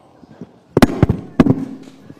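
Two sudden, explosive sneezes about half a second apart, each a sharp noisy burst that quickly fades, with a faint low murmur in the background.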